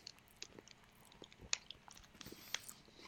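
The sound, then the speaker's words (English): Quiet chewing of a crunchy mint-flavored Gatorade protein bar, with irregular sharp crackles and crisp snaps scattered over about three seconds, no talking. “So whatever the crunchy shit is, it's pretty good.”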